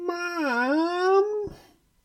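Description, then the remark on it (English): A voice imitates a long, squeaky whine: one sustained nasal tone that dips in pitch, climbs back up, then breaks off into a short breathy exhale. It is fairly loud, with no other sounds. “It was a long and squeaky, whiny...”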